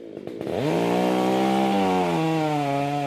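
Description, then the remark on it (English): A chainsaw revs up after a brief sputter and then bites steadily into the thick wood of a huge kauri tree that has crashed onto a road in Titirangi, West Auckland. Its engine whine is loud and dips in pitch as the blade bogs down under load. “That's a chainsaw cutting into a huge kauri tree in Titirangi, West Auckland.”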